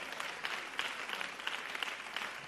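A church audience claps together in praise of the Lord, a steady, dense burst of applause sustained for a few seconds with no talking over it.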